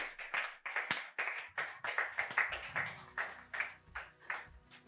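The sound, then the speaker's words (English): An audience claps their hands in steady, overlapping bursts, a loud crowd applause with sharp repeated slaps running throughout, with no talking over it. “Give a big clap of your hands.”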